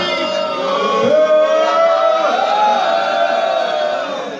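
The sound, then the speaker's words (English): A comedy show audience boos loudly and steadily, many voices blending into a sustained, wavering low drone with rising and falling pitch for several seconds, with no one speaking over it. “With booing like that, everyone in the hallway thinks you're booing me right now.”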